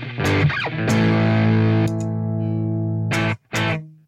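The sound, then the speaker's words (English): Distorted electric guitar chords, played through a tweed-style amp with the drive turned up, ring out with a long, washy reverb tail, followed by two short, loud strums near the end. No one speaks. “Yeah, if I can't get less reverb than that, that's a lot. That's a lot, especially for like such an effecty reverb, you know?”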